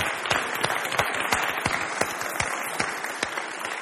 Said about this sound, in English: Okay, can you just stand up if you've run a marathon in your life? I'd love to give these guys just a massive cheer, because that is an amazing achievement. Well done, guys.